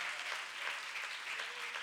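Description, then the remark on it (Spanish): Steady applause from an audience, given to the Lord, a dense wash of many hands clapping at an even level throughout, with no voices rising above it. “Y el que lo crea, denle un fuerte aplauso al Señor con todo el corazón.”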